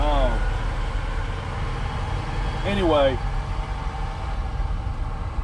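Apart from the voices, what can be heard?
truck engine idling nearby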